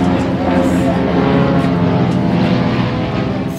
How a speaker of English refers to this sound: three planes from the Fraser Blues flew over John Swittick's house in Langley